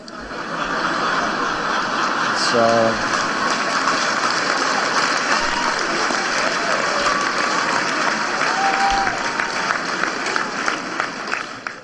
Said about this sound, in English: He gets a big laugh and applause.